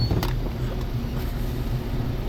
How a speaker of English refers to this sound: Keep the car running.